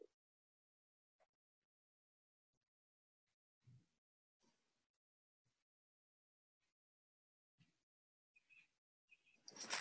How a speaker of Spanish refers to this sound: Pájaro, pájaro. Escuchar, escuchar.